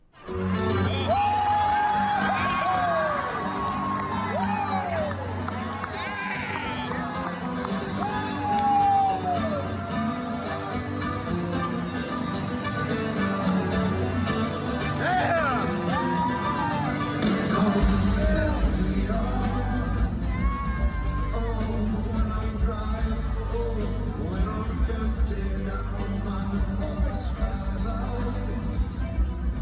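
A packed concert crowd cheers and calls out continuously for the band to play a song, with whoops and yells rising above a dense roar. The noise stays loud throughout, with a deeper rumble building near the end.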